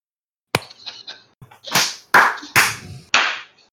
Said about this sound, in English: All right. In 3, 2, and I know this is dumb, but I'm going to clap just so I know where to edit.